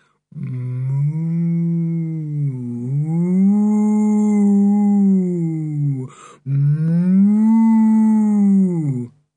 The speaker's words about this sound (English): he opened his mouth and mooed dolefully, like a cow in pain. At once the echoes took up the mooing, magnified it, sent it along all the underground passages, till it seemed as if 1,000 cows had wandered there and were mooing together.